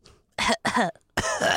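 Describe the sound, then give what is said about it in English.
Three loud coughs right into the microphone, two quick ones back to back followed by a longer, raspier cough after a short pause, with no talking. “Can you cough into the mic?”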